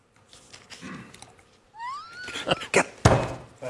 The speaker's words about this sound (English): Punches his desk. He's so angry.